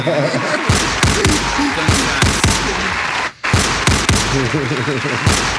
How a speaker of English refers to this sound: Just give her a gunshot one time and we moving on.